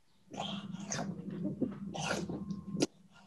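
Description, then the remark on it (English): Wet gulping and swallowing with smacking lips over a low rumbling undertone, running for about three seconds and ending on a sharp smack, with no talking. “Oh my God, that gulp and swallow is going to fucking haunt me because it sounds familiar.”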